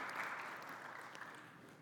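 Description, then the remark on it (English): A crowd applauds steadily, a dense wash of many hands clapping at once that holds fairly even and loud before easing slightly at the end. “You definitely want to applaud that.”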